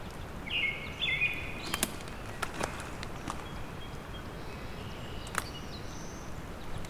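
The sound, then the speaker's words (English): Buzzy, drawn-out black-throated blue warbler song notes sound, one early and a fainter one near the end, with crunchy footsteps and scattered clicks in the foreground. “There's the bees of black-throated blue warbler.”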